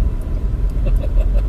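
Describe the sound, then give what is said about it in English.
Steady, loud low rumble of a car cruising along a highway near mile marker 72 in freely flowing traffic, with constant road and engine noise and a few faint higher hisses of passing traffic, no talking. “I'm at mile marker 72. The traffic's pretty fluid.”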